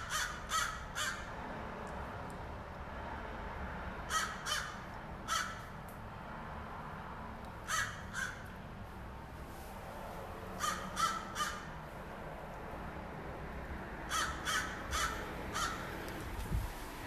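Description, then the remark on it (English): Several crows caw in short bursts of two or three harsh calls, repeating every few seconds over a steady low outdoor rumble, clear. “been a while since I've heard intense crow discussions.”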